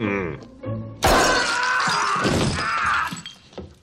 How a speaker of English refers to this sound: steps onto glass ornaments barefooted.